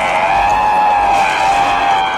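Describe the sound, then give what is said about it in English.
A bizarre, shrill shriek sound effect holds steady and loud for about two seconds, a piercing, squealing screech with a harsh, grating edge and no talking over it. “It lets out a bizarre shriek sound effect we've heard before on the show.”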